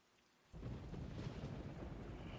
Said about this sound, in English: Man, God, do you hear that rain? God, it's really coming down.